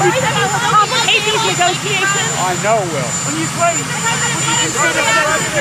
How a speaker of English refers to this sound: I know it will, says Joe Biden over the sound of that helicopter.